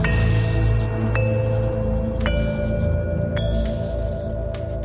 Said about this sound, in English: But I find it interesting, this chime-like music they use at the beginning here.